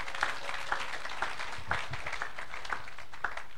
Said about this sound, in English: Oh, give a clap of hands to the Lord.